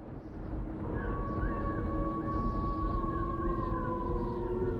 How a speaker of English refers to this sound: I noticed Disney took the time to slip in some Haunted Mansion sound effects of their own, specifically the Howling Wolf and the Expanding Room Scream. The wolf shows up many times during the 7-minute and 12-second song, including right at the start.